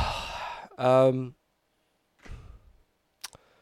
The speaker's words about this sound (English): Oh, I'm going to yawn.